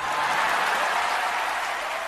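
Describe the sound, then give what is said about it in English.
An audience claps for Henry Winkler winning an Emmy, producing a dense, even wash of many hands at constant strong loudness for about two seconds, with no voices or cheering standing out. “Applause for Henry Winkler as well.”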